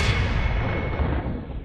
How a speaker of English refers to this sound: We'll do another whoosh here.